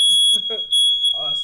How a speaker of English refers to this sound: Oh, smoke alarm. We got a fire drill, y'all. Don't worry.